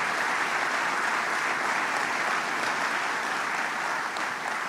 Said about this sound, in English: How about a round of applause for all the great talent in the room today?